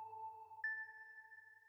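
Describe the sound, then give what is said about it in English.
Steady electronic tones of a monitor alarm on an ICU ward, a mid-pitched hum with a higher, piercing tone joining partway through and holding to the end. Fairly quiet, with no voices. “Lots of alarms, lots of bells and sounds, beeping sounds from monitors, from ventilators, from kidney machines.”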